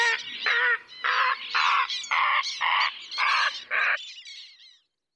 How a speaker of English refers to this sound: Until by summer, a cacophony of martins and warblers and herons. Do herons sing?